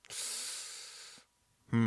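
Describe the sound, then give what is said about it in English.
A single sneeze: a sudden, loud, breathy burst of hissing air that lasts about a second, then cuts off. After a brief pause, someone begins to speak. “Bless you.”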